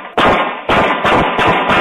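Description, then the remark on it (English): Five loud gunshots from a semi-automatic weapon crack out in quick succession on the 1900 block of West Montgomery Avenue during a tribute at the Temple University bell tower, each a sharp burst with a brief ringing tail, spaced a little unevenly over a couple of seconds with no talking. “And this as then shots ring out.”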